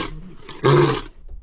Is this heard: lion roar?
yes